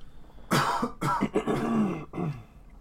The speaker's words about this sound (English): good co-host cough there.